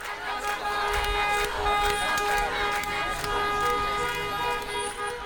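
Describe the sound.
Car horns blare in long, overlapping blasts over a noisy street as young Palestinians drive in a procession lasting into the middle of the night, with a crowd's voices and shouts mixed in throughout, steady.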